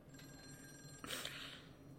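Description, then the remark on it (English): A telephone bell rings in a bright, jangling burst that starts partway through, fairly soft, with no voices over it and a faint steady tone beforehand. “Better be Charles Bronson on the phone.”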